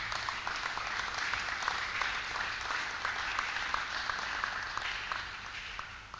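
An audience clapping their hands in sustained applause, a dense, steady patter of many claps at an even loudness that tapers off slightly at the end.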